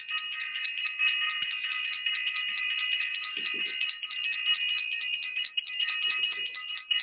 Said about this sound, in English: I want to ring the bell for self-invested and for all of our self-invested family members.